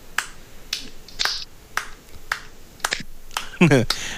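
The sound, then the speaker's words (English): Slow, evenly spaced 80s-style hand claps, about eight sharp smacks in a row, fairly loud, with a brief voice breaking in near the end. “I see you're rolling out with the slow 80s clap.”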